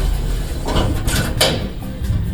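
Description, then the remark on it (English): A short mechanical whoosh and rumble of an automatic elevator door sliding along its track, over a steady low hum, with a couple of brief clunks. “Another door. Push the button. Push the button.”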